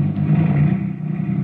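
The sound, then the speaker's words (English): A car engine hums steadily, a low droning rumble with a faint mechanical clatter as the vehicle pulls away, with no voices. “Then the car moved on.”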